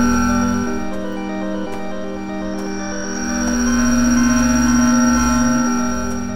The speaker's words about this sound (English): I can't hear you. This interference is getting worse. I'm struggling to hold on to the signal.